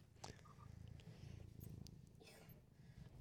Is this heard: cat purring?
yes